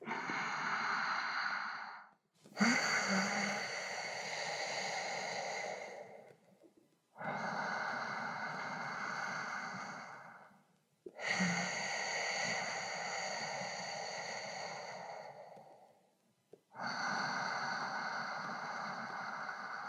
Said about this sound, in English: First, you want to create a constriction at the back of your throat, engaging the muscles so that you can hear the sound of your breath when you breathe in and out of your nose, like this.